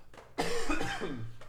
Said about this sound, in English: My cough won't go away, guys. Pray for me.